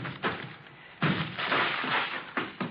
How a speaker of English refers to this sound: Breaking down the door.